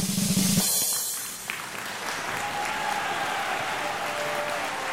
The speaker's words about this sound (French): Elle réussit avec brio, je l'applaudis de toutes mes forces.